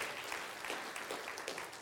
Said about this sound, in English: Come on, that's a hand clap worthy right there, isn't it?